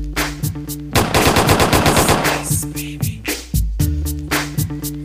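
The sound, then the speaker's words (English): A loud, rapid burst of machine gun fire rattles for about a second and a half, followed by a few scattered single shots, all over a steady bass-heavy music beat. “Gunshots are ice like baby.”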